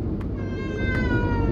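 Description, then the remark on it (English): A baby cries in one drawn-out, high, wavering wail that carries steadily over a low, rumbling background, with no talking. “And a baby's crying.”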